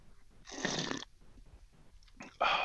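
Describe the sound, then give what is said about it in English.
A person takes a first sip of a hoppy, hazy beer from a can. A breathy slurping sip lasts about half a second, then a quiet pause, followed by a sharp intake and a louder breathy exhale as the drink is swallowed. “I haven't even had a sip yet, so let's listen in as I take my first sip.”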